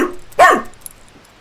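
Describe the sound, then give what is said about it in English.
A single loud, sharp dog bark, short and forceful, fading quickly into quiet with no one speaking. “Let's not bark.”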